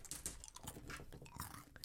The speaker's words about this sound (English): Oh, you're going to advertise M&Ms? We're going to advertise ASMR M&M style, where you'll listen to me crunch on my M&Ms.